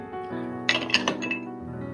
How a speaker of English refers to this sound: So, oh, that was a bit of a soft ice cube. Well, I put ice in it.